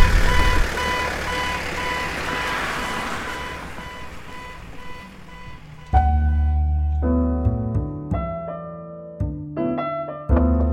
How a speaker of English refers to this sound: That is a Toyota Princess Hilux 7.1 being broken into by a couple of...